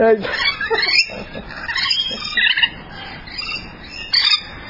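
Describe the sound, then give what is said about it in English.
Rainbow lorikeets squawk and chirp in a dense, overlapping chorus, loud, with harsh screeches bursting out over a continuous chatter of the flock. “Thank you for showing us the rainbow lorikeets.”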